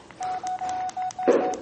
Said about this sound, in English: Let me just turn off my phone, whatever's left of it. Definitely not much left of it.